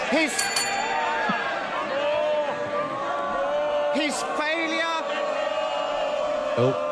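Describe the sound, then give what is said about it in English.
MPs, including Labour MPs, shout and jeer over one another in a parliamentary chamber during questions to the Prime Minister, in a loud, continuous din, with rising and falling cries cutting through the crowd noise throughout. “Two Labour MPs shouting more.”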